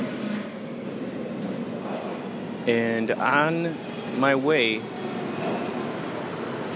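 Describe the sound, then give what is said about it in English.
Steady low mechanical rumble of a subway train idling or rolling through a subway station, while a man speaks briefly over it partway through. “We are currently waiting at the subway here.”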